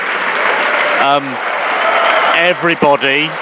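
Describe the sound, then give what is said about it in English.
Thunderous applause from a large, standing concert audience at the end of Berlioz's Symphonie Fantastique, played by the LA Phil and conducted by Gustavo Dudamel. It fills the hall without pause, with a few loud cheers and shouts of bravo rising above the dense clapping. “This is the applause at the end of Berlioz Symphony Fantastique, played by the LA Phil, conducted by Gustavo Dudamel.”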